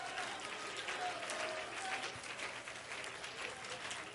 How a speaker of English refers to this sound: Oh, come on, somebody clap right now.